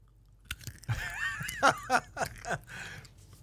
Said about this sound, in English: Put it away so I can make sounds of crunching.